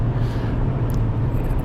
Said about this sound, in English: Played a gig two nights ago, went to my daughter's football game to watch her be a drum major last night, and here I am in the car driving.